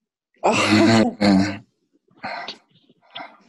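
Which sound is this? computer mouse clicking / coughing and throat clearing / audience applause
coughing and throat clearing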